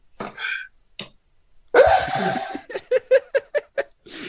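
A single loud, sudden sneeze bursts out, followed by a string of short rhythmic laughs.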